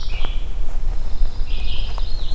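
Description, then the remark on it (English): A pine warbler sings two quick, even trills, each under a second long with a short pause between, over a steady low rumble of outdoor background noise. “So there's the pine warbler.”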